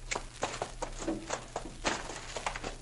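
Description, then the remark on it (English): Horses, Maud and Bess, walk at a steady pace, hooves clip-clopping in an uneven rhythm of sharp knocks, with a low hum underneath. “Too much eating and no work ruins your horse sense.”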